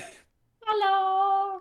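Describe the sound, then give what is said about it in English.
A male cat lets out one long, steady meow, fairly loud, holding its pitch for about a second after a short pause. “Is there a kitty?”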